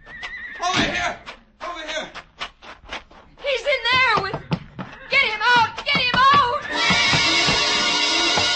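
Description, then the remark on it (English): A horse screams in a series of shrill, wavering whinnies, loud, as it rears in its stall and claws its hooves against the stall, after sharp clattering knocks like hooves striking wood, ending in a steady wash of harsh noise. “The horse rearing, screaming, clawing its hooves against the stall.”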